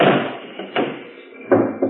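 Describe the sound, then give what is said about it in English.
A car trunk lid slams shut with a heavy thud over a person hiding inside the compartment, followed by a couple of further dull knocks and rattles, with no voices. “Just have to take a chance he doesn't lock the compartment later. Right. We'll tail you in Spencer's car. Close the top.”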